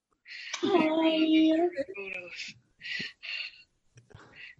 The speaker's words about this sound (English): you're breathing really hard in the phone.